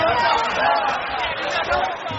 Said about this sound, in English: Boy, I'll tell you what, it's broke loose here, guys. It really it has broke loose. This crowd is irate. They are standing around this building.